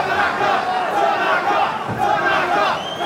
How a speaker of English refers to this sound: Look at the fans standing and cheering. Oh, how could you not? I'll play a little audio here so you can hear just how into this they are. They're over. Can't even hear us.